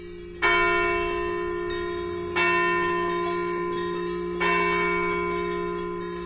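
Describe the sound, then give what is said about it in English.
Church bells chime the Angelus from a nearby church in a Swiss alpine village as a herd of belled cows heads back to the barn; a large bell tolls three times at a slow, steady pace, each deep stroke ringing out and fading in a long, resonant hum. No voices are heard. “In a Swiss alpine village, Stephen Feld recorded a herd of belled cows heading back to the barn as the Angelus chimes from a nearby church.”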